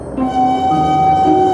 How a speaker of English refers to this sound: Hey, wait. Well, wait a minute. There goes my train.